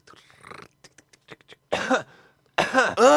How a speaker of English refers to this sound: what are you doing? Can you cover your flipping mouth? Oh. When you're coughing, you disgusted prick.